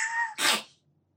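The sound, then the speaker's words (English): A single sneeze from a cat with a nose infection, fairly loud: a brief high, squeaky wheeze of an intake, then a sharp, breathy burst that cuts off into silence. “No, he has an infection in his nose.”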